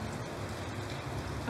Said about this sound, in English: Yes. That was not hail, okay? That was actual snowflakes. And it lasted for maybe about a minute. I didn't have a chance to do a snow angel, but it actually snowed here in Diamond Bar.